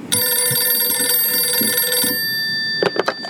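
A telephone rings once with a bright, steady electronic trill lasting about two seconds, then fades to a faint lingering tone, followed by a couple of quick soft clunks; it is a call to Carlos Santana, heard ringing on his end.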